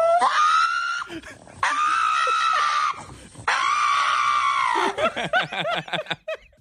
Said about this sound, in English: This dog takes it one step further and screams like a person. This is a pug.